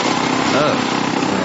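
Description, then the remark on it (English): A steady, loud motor whir of an electric blender runs without a break, a dense high-pitched buzzing hum churning at full speed. “I'll tell you right after I figure out what I'm going to do with this blender.”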